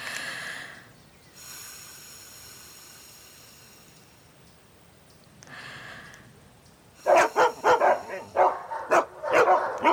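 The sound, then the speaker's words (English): High, thin whistle tones sound first, then a dog breaks into a burst of loud, rapid barks and yips, continuing to the end with no one talking. “Do only dogs hear dog whistles?”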